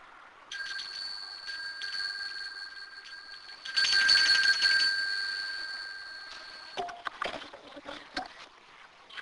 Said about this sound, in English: So I'm going to just be silent for a bit, and in a few minutes, in 5 minutes, I'm going to ring the bell again.